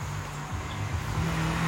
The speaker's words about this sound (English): See, look, this car's going really fast. I could hear it.